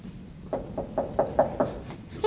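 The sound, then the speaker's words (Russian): Brer Rabbit, a story character, knocks on the door of Mister Lion's house six or seven times in a quick, steady rhythm, each rap a dull, moderately loud thud, with no voices during the knocking. “Постучу не так, не сяк, вот так.”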